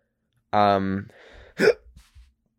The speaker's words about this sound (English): Sorry, I just had a hiccup. That was really painful. Ow.